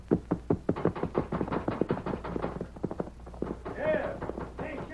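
Rapid, rhythmic hoofbeats of a horse riding off, a steady run of sharp clops that gradually soften, followed by a brief vocal-like sound near the end.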